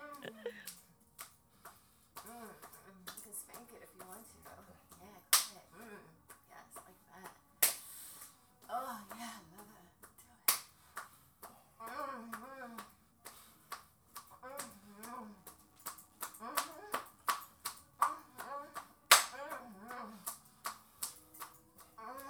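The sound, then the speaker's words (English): Sharp, wet slaps of a man's hand striking a person's bare, oiled skin, repeated many times in an uneven rhythm, crisp, with people talking quietly between and under the slaps. “Yeah, so he's slapping the shit out of you. It looks like he's doing it really hard.”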